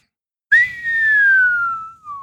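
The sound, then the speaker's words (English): A single long whistle by a kid dropping dung bombs from an upper tree branch, starting high and slowly gliding downward in pitch like the classic falling-bomb sound, loud, ending with a short breathy tail. “The kid was dangling more bombs over them and whistling every time he let one go.”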